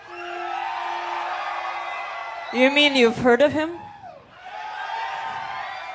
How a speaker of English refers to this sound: You're screaming. What are you screaming? Ah. You had it together a minute ago.